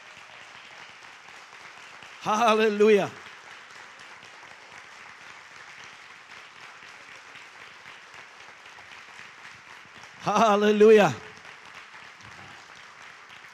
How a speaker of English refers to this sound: Can you stand to your feet and for 30 seconds give him your best hand clap of praise, please?